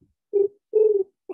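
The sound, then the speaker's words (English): Someone imitates a pigeon's coo with their voice: two low, throaty coos, the second longer and warbling, clear, with a third beginning just as it ends. “All right, so I can do a very good pigeon.”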